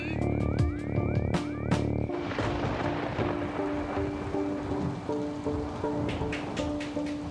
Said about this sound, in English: It has been raining for 4 days straight now. Heavy rain, just like I said.